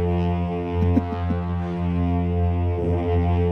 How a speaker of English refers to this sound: Does sound like a bit of a foghorn, doesn't it? It does